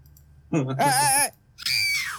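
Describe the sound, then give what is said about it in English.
A person playing Archimedes the Owl in a Dungeons & Dragons game loudly imitates a very exasperated owl screech: a strained, wavering cry followed by a short pause and a second, higher, thinner screech, both harsh. “Who's going to let out a very loud, exasperated screech.”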